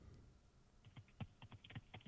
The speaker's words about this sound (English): Fake computer noises. Okay. Are you typing something there?